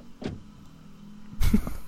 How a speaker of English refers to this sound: What's so funny? A car door closing is funny to you? Yeah. Yeah, the sound is funny.